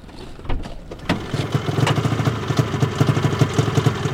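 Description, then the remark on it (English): Trucks parked nose to tail just off the side of a road idle with a steady, throbbing low rumble on a cold February morning as biologists unload snowmobiles, with a couple of heavy thuds and clunks near the start and no talking. “The biologists unload snowmobiles from their idling trucks, parked nose to tail just off the side of the road.”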